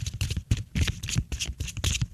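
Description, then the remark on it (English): A tarot deck being shuffled before drawing a card, a quick run of papery riffles and soft slaps in an uneven rhythm, with no talking over it. “I'm going to shuffling it up.”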